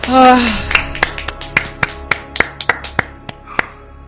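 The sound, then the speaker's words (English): A brief voiced sound opens, then a series of about a dozen sharp, crisp claps for actor Timothy Olyphant follows at a loose, slightly uneven rhythm, fairly loud with no talk over them. “Let's give friend of the show Timothy Olyphant a clap.”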